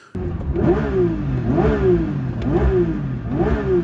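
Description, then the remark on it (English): A Porsche 911 S/T engine revs sharply four times in quick succession, each blip climbing fast from idle to redline and dropping back, loud with a steady rhythm and no talking. “from idle to redline and back within a half a second.”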